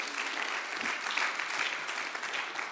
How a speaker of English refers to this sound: Yes, give the Lord a clap.